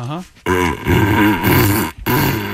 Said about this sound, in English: This is a dog. It's a Weimaraner specifically. It's Gus,